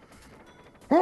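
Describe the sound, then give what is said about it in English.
A single loud, sharp sneeze bursts out suddenly at the very end, after a stretch of quiet background murmur. “Bless you.”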